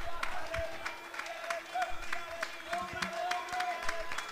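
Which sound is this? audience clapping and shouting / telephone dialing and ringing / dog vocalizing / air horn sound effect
audience clapping and shouting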